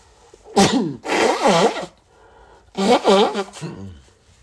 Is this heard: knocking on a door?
no